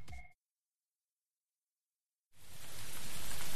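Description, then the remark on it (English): A brief burst of sound cuts off into silence, then steady rainfall hisses in and swells louder, a dense, even wash of falling rain with no voices. “Appropriately ending with some rain there in the back.”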